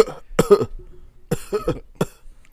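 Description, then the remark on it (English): A voice imitates coughing in a few loud bursts: a double cough, a pause, another pair, then a final single hack, with no talking. “He keeps coughing.”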